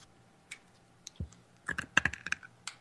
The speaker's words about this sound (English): I'm eating Pez. I'm trying to chew them loud enough so you can actually hear it. Oh, I can. Oh, we can hear it.